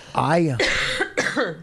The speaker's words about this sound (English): All right, I got to go because my throat is... Why? Because I'm going to start coughing like crazy.